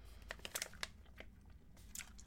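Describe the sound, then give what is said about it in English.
Crisp crunching of hard candy being chewed, a quick burst of sharp bites that settles into softer, wetter chewing as the candy turns into gum, with no talking. “How did they chew this in the movie and not be grossed out?”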